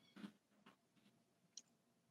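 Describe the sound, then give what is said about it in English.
A few soft, irregular taps on a computer keyboard click quietly, separated by short pauses, with no voices. “I was typing because I actually kicked myself off the live stream, which goes off to say my hosting skills.”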